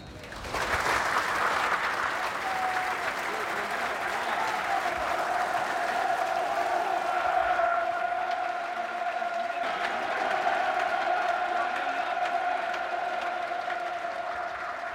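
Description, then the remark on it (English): A large stadium crowd gives a minute of applause in remembrance of a person, ending on the referee's whistle. It is a dense, sustained wash of clapping that stays at an even level throughout, with faint whistles or cheers rising above it. “Please join together to remember John with a minute of applause, which will end on the referee's whistle.”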